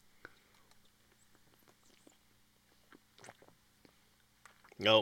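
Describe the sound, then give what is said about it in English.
Wet mouth noises: scattered small smacks and squishy sucking sounds building to a loud, brief slurp at the end as someone gulps down a blue raspberry jello shot. “Slurp jello shots. Let's go. Yep, there you go. Cheers.”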